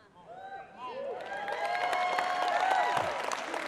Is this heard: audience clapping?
yes